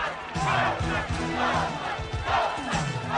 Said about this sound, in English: And it wasn't until the filming on location in New York happened, and there's the scene where everyone's chanting Ghostbusters.